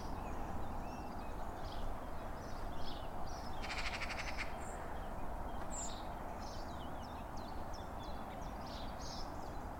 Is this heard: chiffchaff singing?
yes